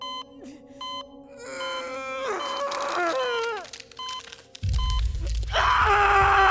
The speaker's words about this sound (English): Why the hell is she screaming so much? This doesn't seem right.